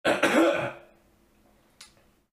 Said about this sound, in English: I'm just gonna clear my throat very loud.